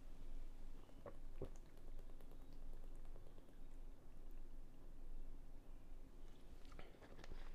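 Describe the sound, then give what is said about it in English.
Someone drinks water from a bottle, with steady gulping, sloshing and mouth noises running for several seconds and no talking. “Hold on, let me hit my water.”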